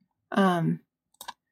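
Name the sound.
dice being rolled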